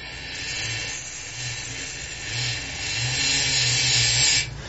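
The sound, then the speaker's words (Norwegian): A steady hissing spray of lube from a spray can onto a bicycle cassette runs throughout, with a faint low whirring and clicking from the bicycle chain being turned backwards underneath. No one speaks. “Så sprayer jeg rett og slett litt på kassetten her, mens jeg vrir kjede bakover.”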